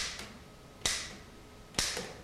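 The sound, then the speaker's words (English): Two sharp, loud mechanical clacks of the keys of a nearly 120-year-old typewriter, spaced about a second apart, with a fainter tap just before them; no voices. “This typewriter is nearly 120 years old.”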